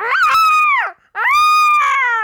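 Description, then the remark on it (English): A voice imitates an elephant's trumpet with two loud, brassy blasts, each rising, holding a high, steady pitch and then dropping, separated by a brief pause. “See, they make the same sound because their elephant trunks make the same sound.”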